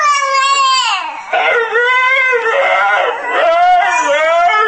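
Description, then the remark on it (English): A husky howls loudly in long, continuous wavering cries that slide up and down in pitch, with barely a break throughout. “Thank you, baby and husky.”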